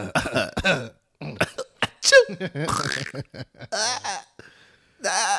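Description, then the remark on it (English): Someone clears their throat repeatedly, a run of harsh, irregular rasps and short cough-like bursts mixed with voiced grunts, separated by brief pauses. “Clear my throat.”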